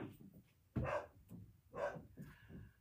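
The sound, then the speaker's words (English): Dogs bark, three separate woofs spaced about a second apart, fairly quiet over a low background rumble with no talking. “I can hear someone running around though, trying to collect dogs up, like the dog catcher.”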